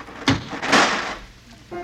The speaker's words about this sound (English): Mary, next time don't slam the door so hard.